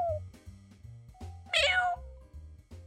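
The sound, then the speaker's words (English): A person imitates a cat with one loud, drawn-out meow midway through, over a low, steady rhythmic thumping in the background. “I forgot for a second. I thought I was a cat.”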